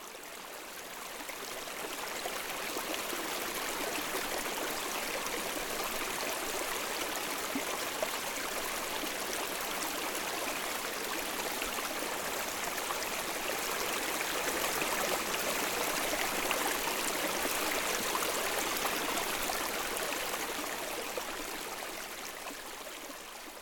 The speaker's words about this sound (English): we had rivers flowing everywhere, including right through the middle of our camp, right where we were sitting when we recorded this